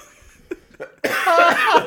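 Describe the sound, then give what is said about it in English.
Two small coughs lead into a loud, harsh burst of sustained hacking, a strained coughing fit that sounds rough and forceful, with no talking. “I cough so hard I almost puked.”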